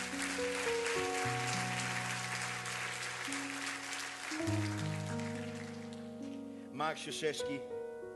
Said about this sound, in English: Go ahead and clap your hands. That's all right. I hear it.